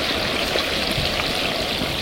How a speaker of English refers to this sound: Take the lid off here. You hear the grease bubbling in there. And slowly lowering the turkey into the grease.